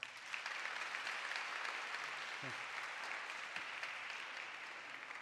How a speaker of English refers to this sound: And a final round of applause for Pastor Rodney.